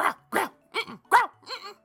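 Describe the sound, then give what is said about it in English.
A dog lets out a series of five short, grumbling growl-like vocalizations in quick succession, each rising and falling like a muttered "mm-mm," with brief pauses between them. “How'd you train your growls to say mm-mm?”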